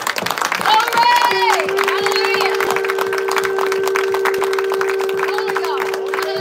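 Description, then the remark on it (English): A shofar, blown during a worship service to give the Lord praise, sounds one long, steady blast after a brief rising start, holding a single bright tone for about five seconds over a crowd cheering and clapping. “We're going to blast the shofar as we want you to give the Lord praise for his word today.”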